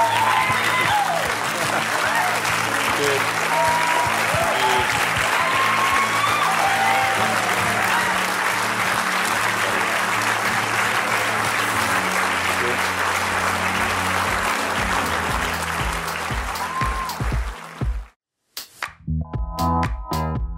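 A crowd applauds steadily and loudly for about eighteen seconds, with scattered cheers and whistles over the clapping, before it cuts off abruptly and a different sound begins.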